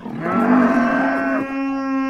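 A single long, loud cow moo, drawn out for about two seconds, with a rich, droning tone that shifts slightly before settling and trailing off. No one speaks.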